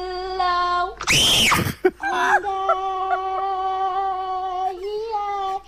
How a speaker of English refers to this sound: And but we know from the screams she can hit that note, right? Like, she yeah. can get up there. Poor kid.